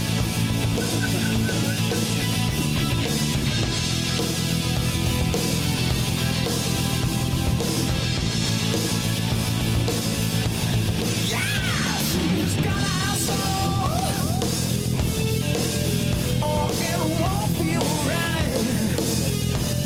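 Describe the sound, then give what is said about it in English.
A Makita electric drill with a slower motor, set to 60 cycles, whirs against guitar pickups inside loud, dense rock music, its tone sliding up and down repeatedly in the latter half. No one speaks. “Oh, I love when the Makita comes back in there.”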